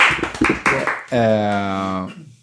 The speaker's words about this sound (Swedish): Applåder.